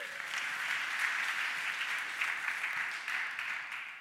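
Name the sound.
round of applause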